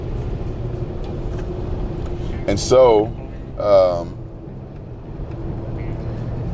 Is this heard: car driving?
yes